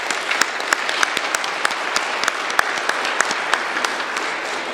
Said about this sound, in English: Could we please give him a round of applause?